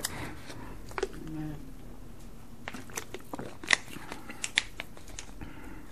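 Someone takes a drink of water from a glass: scattered small clicks and a couple of brighter clinks, soft swallowing and handling noises, with no one speaking.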